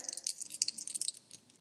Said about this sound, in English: 11. Oh my gosh, the dice are kind today. Also 11.